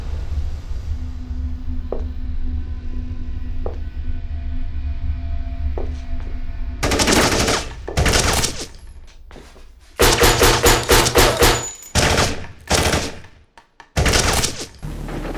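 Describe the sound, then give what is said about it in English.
A low steady hum gives way to loud gunfire fired from inside a house: a few heavy shots, then rapid volleys of closely spaced blasts with brief pauses between bursts. No one speaks. “It appears that gunshots have just been fired from inside Mr. Washington's home.”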